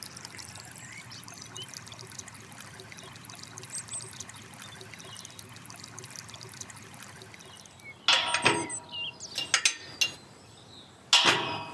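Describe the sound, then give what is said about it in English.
A steady trickle of natural spring water runs continuously out of a limestone hillside by Pope's Walk in Bath, a soft, even babble, then a few louder splashing bursts break in near the end. “So a feature of Bath is that there's lots and lots of natural springs that pop out on the hills, and this is because of the geology of Bath, with all the limestone and the water being trapped and then popping out on the hills.”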